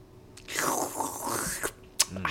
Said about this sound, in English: That is how I sound when I drink.